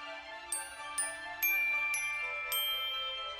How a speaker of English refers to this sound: Something rang out clear and sweet like little bells. Oh, that is my dear musical clock, she exclaimed joyfully.